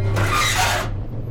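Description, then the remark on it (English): A car drops off its jack with a loud, harsh scraping crash that lasts under a second and cuts off abruptly, leaving a low steady hum underneath. “But that jack's not placed right. It's gonna... Look out, it's coming down on you!”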